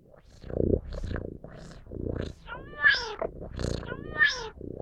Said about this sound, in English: But wait, is that a cat? When did we get a cat? It's not a cat. I can see that. Does it have 6 legs? It's a robo-cat, I guess?